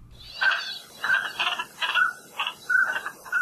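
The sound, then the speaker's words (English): Northern pintail duck (Koloa Mapu), one of Hawaii's most common migratory ducks, calls: a rapid series of about eight short, nasal, mid-pitched notes in an uneven rhythm, moderately loud with no voices present. “Today we've got the call of one of Hawaii's most common migratory ducks.”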